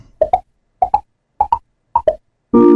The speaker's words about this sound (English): Is that the TiVo sound? Yes! Dang. What? Dude, I thought that was going to trick both y'all. I never had a TiVo, but I just remember... That was like fast-forwarding, right? Yeah.